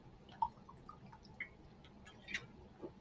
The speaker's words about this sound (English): Sorry, I got mouth dryness, so I need to take a sip of water there.